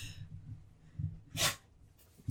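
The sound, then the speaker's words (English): A sick dog sneezes and snorts: one sharp, wet burst in the middle and a shorter snort at the end, with low snuffling and breathing in between. “My dogs are being extra annoying. Cosmo has an actual booger.”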